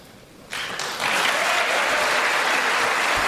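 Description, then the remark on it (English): An audience bursts into applause, the clapping starting suddenly and swelling within a second into a loud, dense, steady roar of many hands that holds to the end. “Random applause line.”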